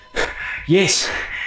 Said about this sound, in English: You hear on the comms sound of a man panting as if he's been running.